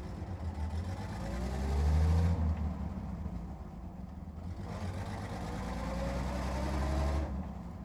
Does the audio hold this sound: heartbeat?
no